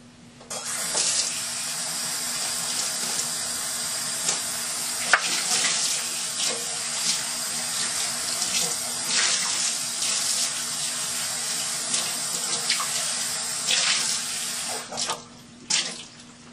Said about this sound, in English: I like to make sure my bowl is really extra clean. Yeah, I'm going to rinse it off a little bit more. It still smells like soap.